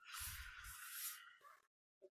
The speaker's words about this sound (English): Hearing her breathe like that makes me want to take deep breaths. It's good acting when she can make her breathing like sporadic.